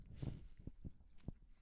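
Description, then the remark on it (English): Wet chewing of candy right at the microphone, with several soft crunching bites spaced irregularly over a second and a half of otherwise quiet. “Finish chewing. I can't listen to it.”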